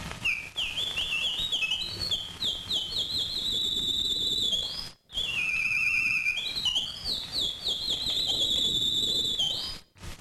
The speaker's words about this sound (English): Bird, if you will.